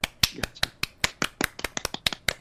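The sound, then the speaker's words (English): Light studio applause from two people: a quick, slightly uneven run of crisp hand claps lasting a couple of seconds, with no talking. “Some light studio applause for courtesy of”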